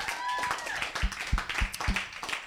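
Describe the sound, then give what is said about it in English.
An audience claps in a steady, dense patter for a couple of seconds, welcoming the final player of a game. A high whistle rises over it at the start, and a few duller thumps punch through the applause. “Clap it up”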